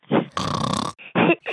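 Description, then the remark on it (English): A voice imitates snoring with several rough, throaty bursts in a broken rhythm, one long rasping snort in the middle flanked by shorter grunting breaths, fairly loud and alone. “That's how I snore at night.”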